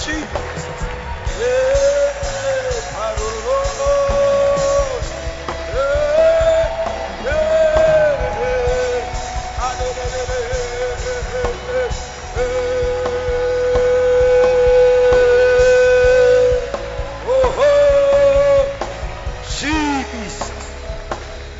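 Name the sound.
audience clapping hands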